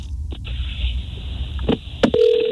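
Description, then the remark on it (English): A phone line connects with a few sharp clicks, then a steady ringback tone starts near the end over a thin, constant high-pitched whine and faint line hiss. No one speaks. “It's ringing.”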